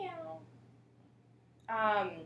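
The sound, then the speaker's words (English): A human voice imitates a cat's meow twice: a short fading mew, a pause, then a louder, drawn-out meow with a steady low hum underneath. “So that's my story. Meow.”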